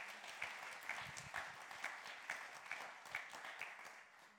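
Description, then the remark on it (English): An audience at the Vine applauds a guest for coming, a dense wash of many hands clapping at a steady, even level with a few sharper claps standing out, and no voices over it. “Should we give him a round of applause for coming over?”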